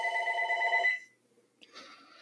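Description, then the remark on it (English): A telephone rings with a bright, trilling electronic tone for about a second, falls silent briefly, then begins another ring. The sound is clear, with no talking. “I love it when phones ring.”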